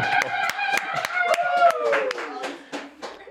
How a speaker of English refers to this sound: Everyone clap.